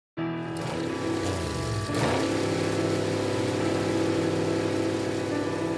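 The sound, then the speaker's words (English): An early automobile engine comes to life with a bang and runs loud with a steady, rattling drone, briefly revving or sputtering about two seconds in before settling into an even idle. “It's ready. It's running. With a bang, the engine comes to life.”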